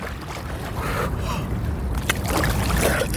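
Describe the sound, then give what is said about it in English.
Continuous sloshing and splashing of water as someone plunges into the very cold Dnipro River in Ukraine, with a sharper splash partway through and a faint gasping breath, no talking. “in the Dnipro River”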